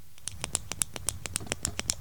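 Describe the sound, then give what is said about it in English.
A person imitates dolphin squeaks: a rapid, steady train of about a dozen sharp clicks topped with shrill little chirps, fairly quiet, with no talking. “that's from …. He is part dolphin.”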